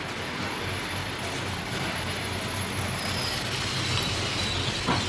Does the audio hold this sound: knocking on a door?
no